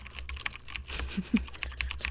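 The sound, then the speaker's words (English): Rapid, irregular clicking of keys on a computer keyboard, a steady flurry of light taps with a few slightly louder strikes, with no voices present. “Hold on, let me crunch the numbers again.”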